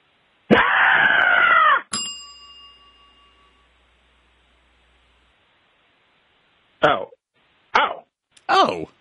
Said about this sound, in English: I was not screaming. That wasn't a special scream.